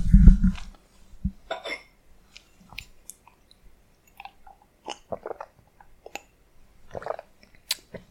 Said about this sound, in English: Let me just take a sip of my latte.